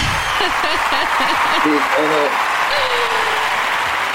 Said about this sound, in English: I got to get him some claps. I'm going to get him some real claps, too, so everybody know.